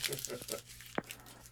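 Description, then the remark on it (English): Scissors snip in a quick, quiet cluster of crisp cuts while a beard is trimmed, then a single sharper snip stands out after a short pause, with a faint hum underneath. “put them damn scissors up, bro. Yeah, I don't know what he been trimming for like an hour, bro.”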